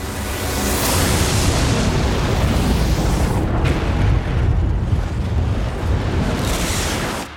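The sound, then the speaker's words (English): A fiery explosion of flames bursting from a king's body after a lightning strike roars loudly and steadily for several seconds, a dense, rumbling blast of flame that fills the whole stretch without letting up. No one speaks. “Flames exploded from his body like orange feathers.”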